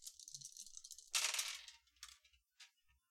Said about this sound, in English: What'd you roll for your defense dice?